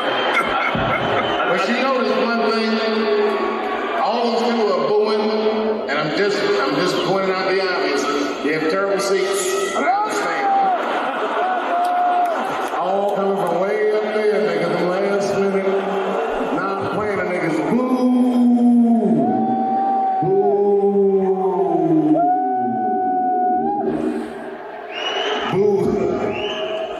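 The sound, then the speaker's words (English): A large crowd boos loudly and continuously, a dense wall of low, droning voices with long falling 'boo' tones rising out of the din toward the end. “You can't fight that boo army.”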